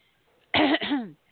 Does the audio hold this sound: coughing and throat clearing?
yes